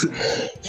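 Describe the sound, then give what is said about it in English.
A single sharp sneeze bursts out, a brief hissy rush of air that quickly fades, with no talking around it. “Bless you.”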